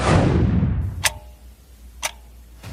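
A clock showing 10:30 ticks slowly and steadily, about one crisp click per second, following a brief fading whoosh at the start. The ticks stand alone with no voices.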